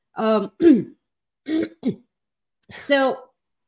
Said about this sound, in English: I just started coughing the moment I remembered this match.